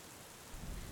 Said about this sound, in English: The storm has picked up outside, and it is a proper Dracula thunderstorm. Huge crashes of lightning and like really hard sheets of rain.